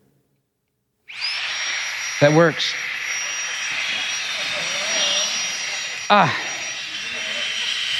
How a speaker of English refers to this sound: So if we want to make this balloon fill its full potential, what do we need to do? Yeah, not a chance. So I have my famous balloon inflator.